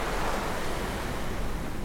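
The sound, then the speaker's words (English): Ocean waves wash steadily onto a beach in a continuous, broad rushing roar, fairly loud, with no voices or other sounds over it. “What I want for you to do is to just lay there and relax and listen to the waves.”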